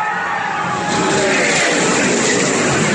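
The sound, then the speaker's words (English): A loud, continuous roar of racing engines during a race car crash, filmed by a fan in the stands right next to where a tire landed, with tire skidding and crowd noise blended into a dense, steady wash of sound. “Yeah, here's the video footage. One of the fans shot in the stands, and he was like right next to where the tire landed.”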